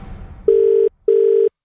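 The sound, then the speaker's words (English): A telephone ringback tone: two short, steady electronic buzzes in quick succession, the classic double ring of a call connecting, clear and loud with no one speaking. “Let's hit the phones and see what happens.”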